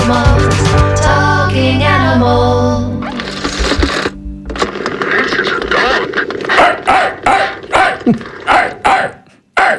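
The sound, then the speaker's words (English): A dog in a studio barks in a quick run of sharp, repeated barks toward the end, following a busier stretch of sound at the start. “We've got a dog in the room here in the studio here”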